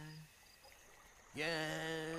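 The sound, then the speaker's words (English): After a quiet stretch of faint background hiss, water suddenly starts pouring, a loud, steady rushing stream with a ringing, resonant tone that continues to the end. “I think I need some water.”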